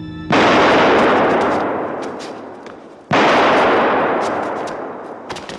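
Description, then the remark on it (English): Two loud gunshots from the opening of a 1967 crime neo-noir film ring out about three seconds apart, each a sharp blast followed by a long, booming reverberant decay, with no talking. “Point Blank is a 1967 crime neo-noir, a cold, hard, and gorgeous movie that opens with two gunshots.”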